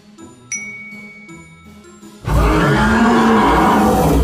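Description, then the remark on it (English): Gentle tinkling chimes ring for a couple of seconds, then a sudden, loud dragon roar bursts in, deep and rumbling, sustaining forceful until the end. “The witch's half broomstick flew into a cloud. and the witch heard a roar.”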